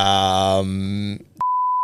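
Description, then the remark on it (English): A person makes a drawn-out vocal sound that breaks off, followed after a brief gap by a loud, steady censor bleep covering a player's name, which starts abruptly and holds to the end. “Can you give us a name of someone who's blocked you, a player, and we'll beep it out just because I want to know?”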